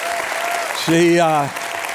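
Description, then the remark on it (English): An audience at a morning church service claps in a steady, dense wash of applause for the preacher's wife, while one voice lets out a sustained, wavering cheer over it for about half a second midway through. “So all right, I want to get in the Word this morning, and in the midst of me, and can I just pause and say, I think y'all should give it up for my wife, who is just amazing.”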